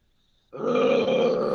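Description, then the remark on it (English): After a brief silence, a person launches into a loud, sustained growling roar imitating a lion, rough and throaty, held steadily for about a second. “Oh, here comes the lion. It's in for the kill.”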